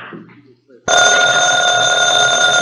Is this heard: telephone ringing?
yes